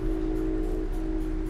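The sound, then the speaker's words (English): A steady rumble of a passenger train running on rails as it passes through BWI Airport Station near Baltimore-Washington International Airport, with a constant low droning hum over deep, even low-end noise and no pauses. “We've just passed through BWI Airport Station, an intermodal passenger station near the Baltimore-Washington International Airport.”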